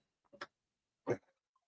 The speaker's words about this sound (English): There is, this chair is noisy.